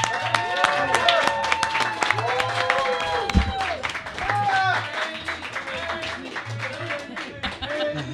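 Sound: audience applause and clapping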